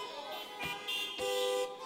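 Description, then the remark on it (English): Several car horns honk in overlapping, sustained blasts, with brief breaks between them, as women sit in their cars in a church parking lot honking. The blaring tones are moderately loud, with no talking. “Ladies drive to the church and they sit in the parking lot and honk the horn.”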